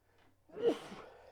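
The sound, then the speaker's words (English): A single sneeze from a person who is getting sick, feeling warm and stuffed up: a quick intake, then a sharp, loud burst of breath with a voiced edge that tails off into a breathy hiss. No one talks. “I feel like I might just be feeling warm and feeling sneezy.”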